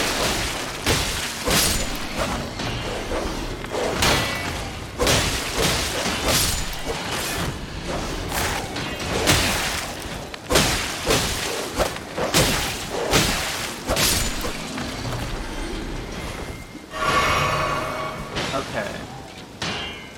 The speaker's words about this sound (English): You can hear the sound of fighting up on the wall. That's not us.